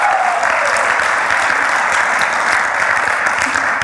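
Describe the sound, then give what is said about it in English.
A large audience at a church service claps together in sustained, dense applause as praise to God, a steady wash of overlapping handclaps with no clear rhythm, staying loud and even throughout. “If you believe our God is good, why don't you give him a hand clap of praise right here and right now?”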